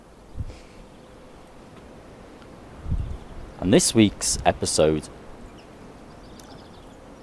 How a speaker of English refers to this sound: it's very windy here, as you can hear. But I'm hoping that with my little pin-on microphone I've got here, that it's not going to be too distracting to the podcast.